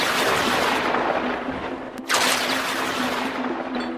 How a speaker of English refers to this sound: Then the great doors burst open with a terrible bang. And an old fairy entered the room.